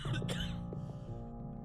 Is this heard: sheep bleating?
no